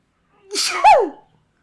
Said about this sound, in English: I'm going to sneeze right now.